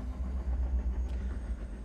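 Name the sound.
train passing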